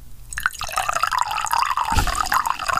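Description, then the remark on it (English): Coffee from a Chemex Ottomatic coffee maker poured steadily into a cup as a refill, a continuous splashing trickle with a gurgling, rising tone as it fills, plus a soft knock partway through. “Actually, I could use a refill if you want to. I got you.”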